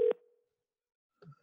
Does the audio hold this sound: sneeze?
no